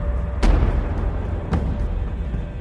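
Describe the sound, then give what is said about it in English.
A sharp gunshot rings out, followed about a second later by another and then a fainter third, each a sudden crack over a constant low rumble. No one speaks. “Hilda describes hearing one gunshot and then two”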